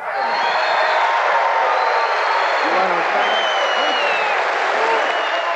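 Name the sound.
crowd applauding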